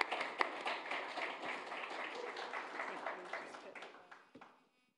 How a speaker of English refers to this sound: So do come up. Please give us a round of applause.